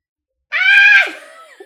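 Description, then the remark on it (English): A person lets out one loud, sustained shout lasting under a second, strained and high-pitched, then trailing off into a fading vocal tail. No other sounds accompany it. “Why are you shouting?”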